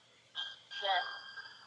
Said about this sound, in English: No, and actually, it was Trey's Facebook Messenger that was ringing.